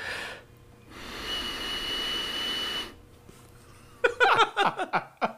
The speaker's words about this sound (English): Hey, DW & Co. Radio. You want to hear my nose whistle?